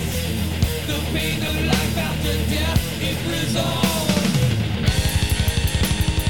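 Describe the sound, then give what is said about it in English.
A loud, dense heavy metal guitar riff with thick distortion drives forward over pounding drums, breaking near the end into a fast, tightly chugging rhythm. No one speaks. “That guitar line? Yeah. That's what it reminded me of.”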